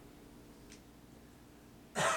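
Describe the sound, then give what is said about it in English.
A single sharp cough bursts out at the very end after near silence, loud and abrupt, coming through the microphone on a call as the person tries to mute themselves to cough, with no talking around it. “Did you just mute yourself to cough?”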